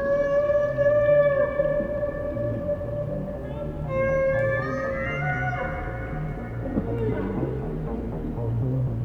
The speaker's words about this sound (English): I mean, I think everyone's drawn to whales for different reasons. For me, for myself personally, it was the sound.